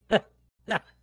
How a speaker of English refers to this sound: So, yeah, we're going to quack one more time just for quack's sake. Oh, yeah, we can hear it.